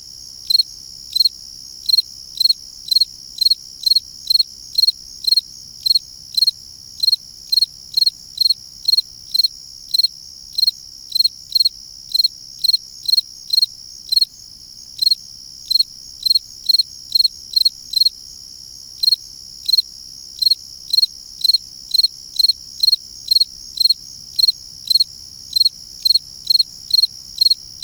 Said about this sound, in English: Lang Elliott and Will Hirschberger recorded this field cricket for their CD, ….